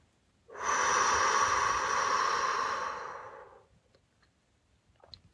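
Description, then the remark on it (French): A single long, deep inhale and exhale, loud, with a breathy rush of air lasting about three seconds before fading into quiet, taken while seated during a breathing exercise. No talking is heard. “Ensuite, prends une profonde inspiration. Et en expirant, laisse partir toutes les inquiétudes ou distractions.”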